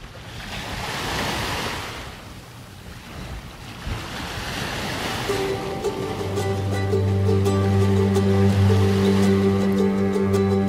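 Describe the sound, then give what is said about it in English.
Ocean waves wash onto the shore at low tide, thin waves breaking in broad, hissing surges. Halfway through, a steady low droning hum joins in and grows louder beneath the surf. No voices. “Tide was low and the waves were thin.”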